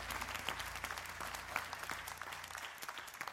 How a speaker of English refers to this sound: Now, y'all clapping like y'all still trying to work it out. But God is going to help you to work that out.